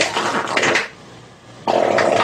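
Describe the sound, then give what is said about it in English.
A voice does a long, loud raspberry imitating a fart: a buzzing blast that sags to a quieter rumble midway, then surges back up without a break, alone. “It wasn't like a stop and here's a second fart. Right. It was the same fart.”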